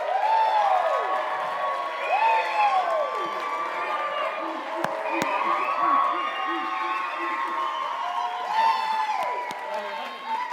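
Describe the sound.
A crowd claps and cheers steadily for about ten seconds, with high whoops and shouted voices rising and falling above a dense, loud wash of applause.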